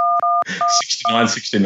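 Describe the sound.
Several steady dual-pitched telephone keypad beeps sound in quick succession as a passcode is entered in reply to an automated prompt to enter the passcode and press pound, the later tones partly overlapped by people talking.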